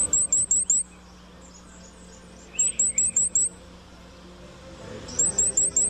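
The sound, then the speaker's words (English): A Cape May Warbler's very high, thin song: three bursts of about five rapid, evenly spaced seee notes, clear, set over a steady low rumble of traffic. “Here's our bird's high-pitched song.”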